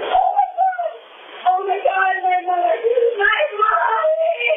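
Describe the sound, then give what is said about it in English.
A woman's anguished cry over a recorded phone call, made at the moment she first sees her mother's body carried out of a shower: sustained, wavering wails and whimpering sobs, loud and continuous for several seconds with a brief dip early on, sounding thin and muffled. “It is then she lets loose a cry of pure anguish.”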